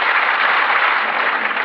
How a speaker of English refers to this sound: I would ask you to applaud, but... No, please, no. I would ask you to applaud.